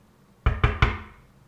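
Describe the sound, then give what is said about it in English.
Three quick, solid knocks on a door in an even rhythm, fairly loud, each thud ringing briefly before quiet returns; no one speaks. “Let me go open the door.”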